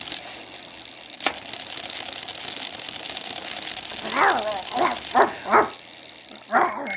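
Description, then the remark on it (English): A dog, Sigroy, barks in a quick run of five or six sharp yips, then again near the end, while being walked up and down the block, over a steady outdoor hiss with no one talking. “All right, so today we're going to go and see what Mr. Matthews is up to with his dog.”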